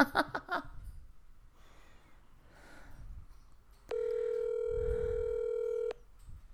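An outgoing phone call rings unanswered on the line: one steady, buzzing ringback tone lasting about two seconds, loud, following a brief burst of laughter and quiet background murmur.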